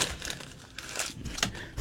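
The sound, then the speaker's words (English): Paper being crumpled up in anger, a string of crisp crinkling bursts, ending with a dull thud as it's harshly thrown and slammed down. No voices. “I just crippled up paper and slammed yes, it down.”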